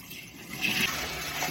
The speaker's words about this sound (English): I'm about to put some water in it.